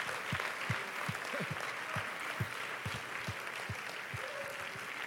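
An audience claps steadily in praise, a dense, continuous patter of many hands with rhythmic beats underneath, moderately loud throughout and with no one speaking over it.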